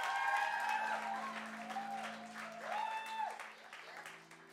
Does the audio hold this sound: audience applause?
yes